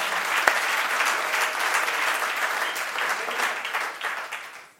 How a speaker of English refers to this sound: I think he deserves a round of applause.